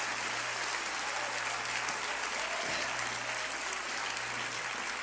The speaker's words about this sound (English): Because Joseph was already in Egypt. Come on, clap your hands and give the Lord praise.